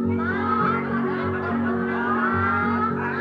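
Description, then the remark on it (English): A voice imitates a hen's clucking, a continuous warbling run of chicken-like calls lasting a few seconds, sung over a steady low musical drone. “The hen went.”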